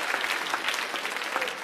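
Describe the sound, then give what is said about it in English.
A church audience claps their hands in worship, a dense, steady wash of many overlapping claps at moderate loudness with no break, and no voices over it. “Oh, clap your hands unto the Lord and thank him that he's a faithful God.”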